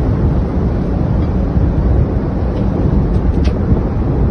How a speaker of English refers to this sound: Listen to the wind. That is awesome. Wow. Man.